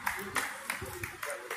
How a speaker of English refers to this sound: And all the Pride people are cheering that he's being arrested.